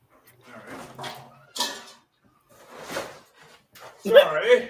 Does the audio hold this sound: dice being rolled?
no